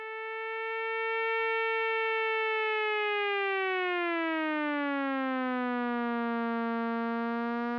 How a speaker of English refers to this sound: Every oscillator, every second, it gets a new pitch and it just sort of wanders up and down. So here's what one of those voices might sound like, isolated.